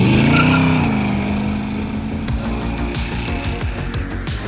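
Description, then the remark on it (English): A car engine drones steadily, its pitch sliding at first, then settling into a rough, pulsing rumble with rapid rhythmic bursts as it drives on. No voices. “Now, I'm the type who likes to drown out the sound of my car with music and podcasts”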